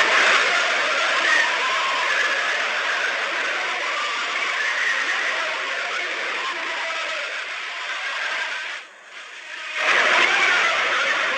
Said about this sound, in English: Are these indeed tortured souls screaming from the bowels of hell, crying out for help and eternal torment? I really hope not, because it's a haunting sound